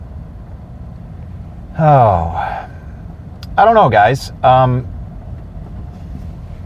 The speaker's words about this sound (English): Working the old tractor again. This is a New Holland.